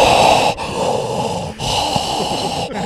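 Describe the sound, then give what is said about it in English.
A voice mimics Darth Vader-style heavy, labored breathing while filming a video: loud, raspy, hissing breaths drawn in and pushed out in a slow, steady rhythm, with brief pauses between each of about three cycles. “If anything has ever made me want to get my fitness back on track, it was the laborious breathing.”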